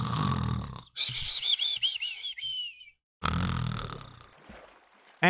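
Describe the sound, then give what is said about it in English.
A voice imitates snoring: two loud rasping inhales, the first ending in a wavering high whistle, separated by a brief silence. “Gotta remember I do the snoring thing for the episodes.”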